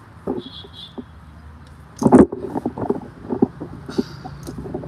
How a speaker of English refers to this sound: Hold on, because it's windy. I don't want this to blow over.